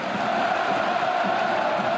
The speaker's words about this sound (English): He's now playing for one of the most revered clubs in Europe, Dortmund. And when 80,000 German fans scream your name, you better deliver.